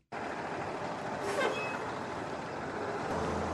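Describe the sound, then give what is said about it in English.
Heavy school bus engines rumble steadily, with a brief sharp hiss of air brakes partway through as the buses pull up and stop at Terry High School in Hinds County. Nobody speaks. “School buses are pulling up to Terry High School in Hinds County.”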